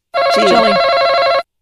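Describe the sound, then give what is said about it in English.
A game show buzzer as a contestant buzzes in first to answer a survey question: a loud, steady electronic buzz, a single harsh tone with rich overtones that holds for just over a second and then cuts off abruptly. “you buzzed in first.”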